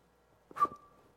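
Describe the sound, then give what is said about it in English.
A single short, breathy whistle made unintentionally by a person: a puff of air turns into a thin steady tone that lingers briefly and fades. It's fairly quiet, with no talking. “I whistled. I didn't mean to whistle.”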